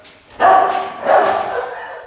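dogs barking

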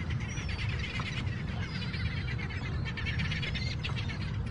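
birds calling

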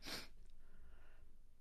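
sneeze

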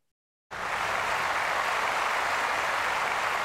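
clapping applause

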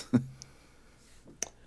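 dice being rolled

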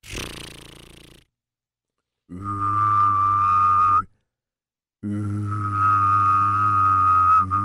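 humming and whistling

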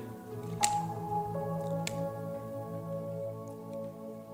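someone drinking water

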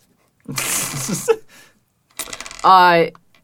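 dice being rolled

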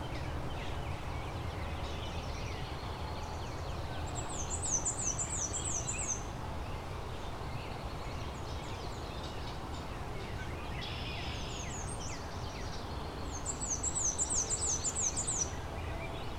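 black-and-white warbler song

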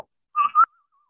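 human whistling

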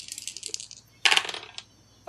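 dice rolling

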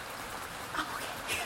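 light drizzling rain

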